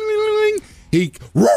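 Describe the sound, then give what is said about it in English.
A voice mimics a phone's door alert chime: one long, steady hummed note, then two short, swooping syllables, loud and with nothing else in the background. “That's why you can train a dog, because he associates that noise now with the door, which shows you how beautiful a dog's mind is.”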